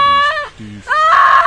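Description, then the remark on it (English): A woman in labor gives a ragged, loud scream of pain, dropping briefly into a low strained groan before surging back into a harsher, rising cry. “Her hands clawed at her stomach, and every few minutes, she'd curl up and choke down a ragged scream.”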